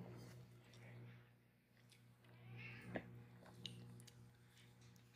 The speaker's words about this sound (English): It's good to hear that our cat has joined us so early to complain that we're not feeding her, as we never do.